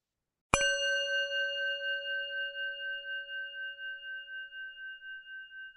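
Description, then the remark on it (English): A single bell is struck once and left to ring, its clear tone sustaining for several seconds with a gentle wavering shimmer as it slowly fades, heard alone without any talking. “I invite you to join me in 30 seconds of silence for the animals, and we'll conclude with the sound of the bell.”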